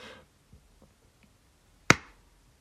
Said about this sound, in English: So this is going to be the third clap, and this is going to be the one for real. Okay, here we go.